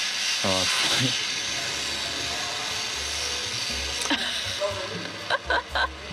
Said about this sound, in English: Oh, hey, I'm so sorry, but they just started vacuuming.